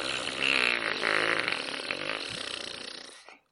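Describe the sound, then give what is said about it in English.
A long, drawn-out fart from a corpse as it dies, lasting over three seconds, loud and buzzy with a wavering pitch, fading out at the end. It stands alone with no talking. “I knew that corpses farted when they died, but I didn't know it was that long.”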